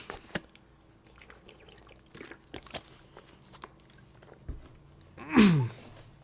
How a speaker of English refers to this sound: Hold on. Let me drink some water.